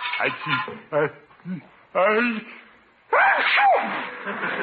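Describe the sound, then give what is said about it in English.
A couple of loud sneezes burst out one after another in a basement with ashes flying everywhere, each with a sharp onset, following some brief vocal sounds. “Bless you!”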